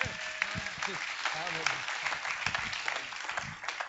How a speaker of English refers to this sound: Come on, everybody, a good cheer. Woo!